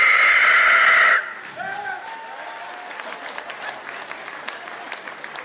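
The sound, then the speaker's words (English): Crowd applause played during a phone call to honour a caller: it opens with a loud, roaring burst, then drops to steady, softer clapping with scattered sharp claps and a few whistles or cheers rising over it. “We let that applause play because it feels warranted to me.”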